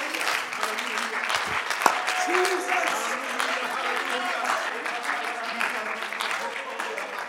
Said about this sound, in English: Clap your hands unto Him one more time.